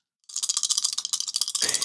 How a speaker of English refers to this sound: There we go. There's nice the ASMR there's right there. That's what we're here for. That's the sound of 3d10 plus 3.